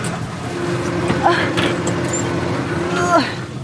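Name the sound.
tractor engine running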